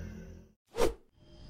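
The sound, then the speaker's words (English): A single quick whoosh of a crossbow arrow flying through the air, swelling and fading in under half a second, set between stretches of low background ambience. “I have a crossbow strapped to my back and plenty of arrows for both of us.”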